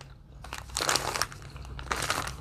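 Crunchy chewing with repeated bites breaking up food, a steady crackling rhythm of crunches heard alone over a faint low hum.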